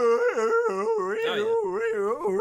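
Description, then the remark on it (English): A dragon's dying scream in a film scene, after the dragon is stabbed: a loud, continuous voice-like wail that warbles up and down about five times in a siren-like rhythm over a steady held tone. “That's the scream that the dragon does as it dies.”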